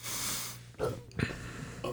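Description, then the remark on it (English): After eating a dab of spicy hot sauce, a breathy hiss gives way to a low, throaty burp in two short guttural bursts, followed by a faint rasp. Nobody speaks. “I just burped and it came back.”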